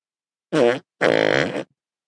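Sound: fart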